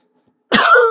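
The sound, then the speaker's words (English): After a moment of silence, a single loud cough bursts out and trails into a rough, rasping throat clear lasting about half a second, from a person still recovering from COVID. “So I'm just going to take one of these so I don't cough and splutter all through this.”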